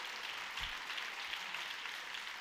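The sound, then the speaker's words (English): An audience claps hands together, in answer to the preacher's call to clap if they understand, in a steady, dense patter of overlapping claps that carries on evenly throughout, with no voices heard over it. “Clap your hand if you understand what I'm saying here today.”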